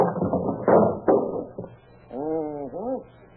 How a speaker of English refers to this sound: You got a hammer around here? Right in the drawer there. What do you want it for? Never mind. Hey, what are you trying to do to that door? Take it off the hinges.